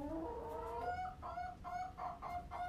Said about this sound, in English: That sounds like happy chickens to me.